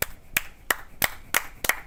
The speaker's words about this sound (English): It's so good to be clapping again.